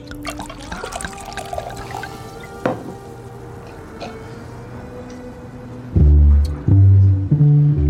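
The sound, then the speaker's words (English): Water is poured into a glass to water down a drink that is too strong, a steady trickling pour with a few drips, ending in a louder, fuller gurgling splash for the last couple of seconds. “We water it down.”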